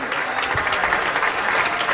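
A crowd applauds steadily, a dense wash of many hands clapping at an even, fairly loud level with no pauses or voices standing out.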